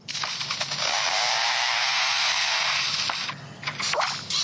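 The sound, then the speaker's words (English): An Australian bird mimics a chainsaw with a loud, steady, harsh buzzing drone lasting several seconds, broken by a few sharp clicks and a brief dip near the end. No one speaks. “Is it a chainsaw? It's doing? What the fuck? No way, man. It's crazy. So this is Australia, huh? Yeah, that's an Australian bird.”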